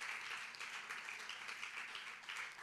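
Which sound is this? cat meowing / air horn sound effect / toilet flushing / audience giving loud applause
audience giving loud applause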